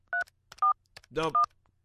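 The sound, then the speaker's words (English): Three short, loud dual-pitched keypad beeps in quick uneven succession, broken by a burst of muffled, garbled phone-line noise, as a man who has already picked up a phone call keeps mashing the telephone buttons. “Sounds like he's just mashing buttons.”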